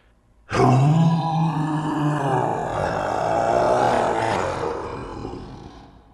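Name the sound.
lion roaring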